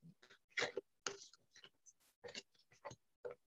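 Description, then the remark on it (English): A deck of cards being shuffled: a quick, irregular series of crisp papery flicks and snaps, fairly soft, with brief pauses between bursts and no talking. “And let me know when to stop shuffling.”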